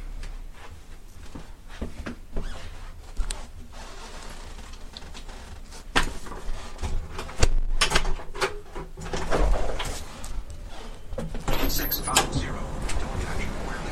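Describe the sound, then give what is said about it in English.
A front door is unlatched and opened for a driver delivering a lunch order from Applebee's Grill Plus Bar, with sharp clicks, a few thumps and rattling handling noises spread over several seconds against a low background hum. “My guess is he's here, so I'm going to open the door.”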